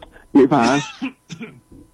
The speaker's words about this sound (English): I'm about to go on a coughing binge. I apologize.